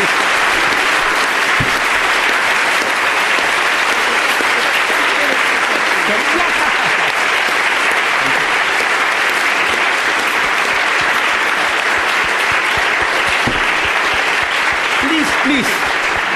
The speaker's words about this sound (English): My standard joke, don't applaud so much, spare your energy.